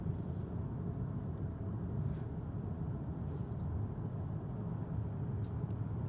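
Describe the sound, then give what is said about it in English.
An '84 big bus drives along the road with a steady, deep engine and tire rumble that holds at an even loudness throughout, with faint scattered clicks above it and no voices. “But here's one going down the road.”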